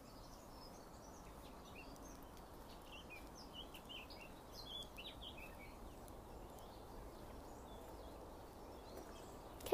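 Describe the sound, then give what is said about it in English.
Many small birds chirp and trill in scattered bursts throughout, soft, over a steady low outdoor rumble with no one speaking. “Happy these birds are. I feel like they're making me even happier.”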